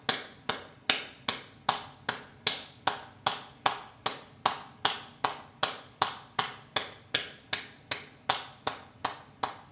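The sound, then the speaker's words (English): Palms slapping together in a steady, even clap, hands held in a prayer position with each palm facing the other, roughly twenty sharp smacks at about two per second, each bright and snappy with a short ringing tail, with no talking. “Can have the palms slapping together.”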